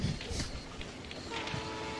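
A train whistle sounds, a steady sustained tone that begins partway through over a low rumbling background, with no talking.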